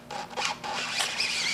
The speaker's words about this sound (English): Let's put the pack of film back in, snap it back in, close the door. And now I'm once again going to attempt to get the black card out of the camera.